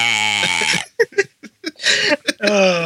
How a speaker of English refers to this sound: Oh, that was freaking juicy, man. Oh, I was forcing it out. He's like, I gotta swallow. Hold on. It's like a 3-year-old having his first burp ever.